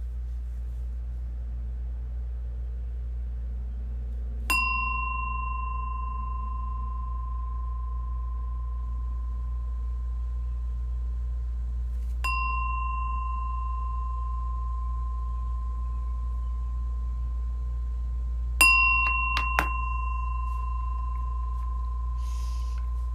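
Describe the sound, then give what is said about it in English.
A meditation bell struck three times to begin a meditation, at slow, even intervals, each clear ringing tone lingering and fading before the next, over a faint low hum with no one speaking. “And I'm going to ring my bell 3 times.”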